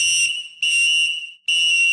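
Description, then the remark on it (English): A voice mimics a train whistle with three loud, shrill, sustained blasts separated by brief gaps, with no talking. “It's going to be whistle, choo-choo, and I'm going to fucking kill you.”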